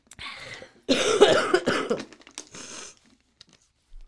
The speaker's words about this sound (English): First, I'm going to cough. Into the tissues that Mike brought in.